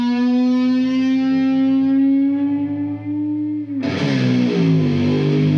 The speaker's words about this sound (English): Guitar!